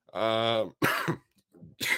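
A man coughs: a drawn-out voiced throat sound, then a couple of harsh, raspy bursts separated by short pauses, with no talking.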